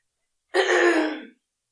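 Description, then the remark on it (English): A single throat clear from a person with a groggy throat, a rough raspy burst lasting under a second, fairly loud and isolated, with silence before and after and no talking. “So if you hear me clearing my throat a few times, I am so sorry.”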